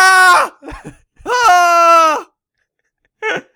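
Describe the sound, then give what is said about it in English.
A voice lets out loud, high-pitched screams in three bursts while running away: a short yell, a longer sustained shriek, then a brief final cry. It sounds like a playful imitation of someone screaming. “Someone asks you a question and you run screaming into the night.”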